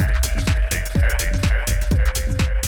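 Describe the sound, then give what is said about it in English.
A steady, mid-pitched sine wave tone hums unbroken through an electronic track with an outer-space type of sound, riding over a regular pulsing kick drum and bright, crisp percussive hits. No voices. “You can hear that nice sine wave right there.”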